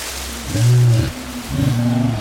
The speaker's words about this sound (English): Kids, that's a lion! A huge lion!